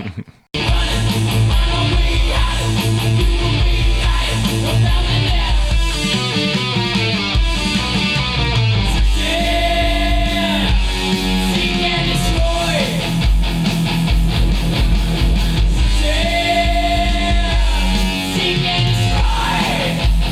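A heavy metal song plays loud and dense throughout, with driving distorted guitars, pounding drums and a deep low end. A shouted lead vocal rises over the band midway.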